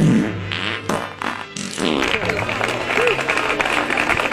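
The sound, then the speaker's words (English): A low, buzzing fart-like sound comes first, then a soft golf clap: a steady patter of light, polite clapping from several people that runs to the end. “Don't you like the golf clap at the end?”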